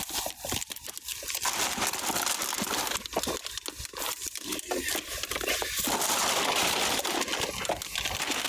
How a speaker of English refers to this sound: I'm going to give each of you a water bottle. Just an empty water bottle.